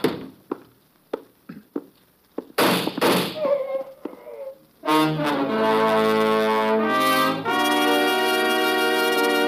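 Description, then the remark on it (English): A run of sharp, dry gunshots fired in Slater's room cracks out in an irregular sequence, followed by a noisy rush and then a loud, sustained burst of dramatic orchestral music. “The shots came from Slater's room.”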